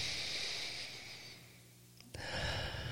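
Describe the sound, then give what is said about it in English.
A long, airy sniff through the nose fades out, then after a brief lull a second forceful sniff starts abruptly, with no talking. “Sniff it up.”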